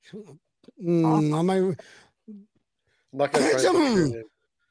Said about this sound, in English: I just coughed. Was I not allowed to do that?